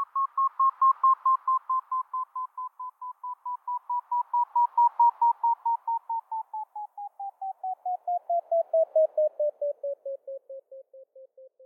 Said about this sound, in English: A pure tone threshold test sounds like a lot of different beeps at different pitches.